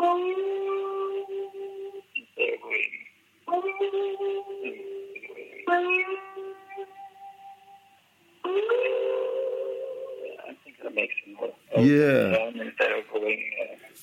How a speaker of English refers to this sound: And another thing is, it's like the violin practice is that you, when you slide, you, instead of vibrating immediately, you leave it still for a few milliseconds, like this.